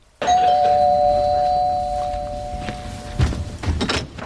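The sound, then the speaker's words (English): A doorbell rings once with a steady, clear mid-pitched chime that holds and slowly fades over about three seconds, followed by a few soft thumps and rattles. “Al doesn't say anything, which I thought was a bit odd, but it is now Ephraim at the door.”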